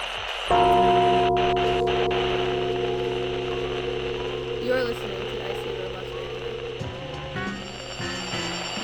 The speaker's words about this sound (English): We're going to get to that in a sec, but until we do, let's light this incense. Let's bang this gong.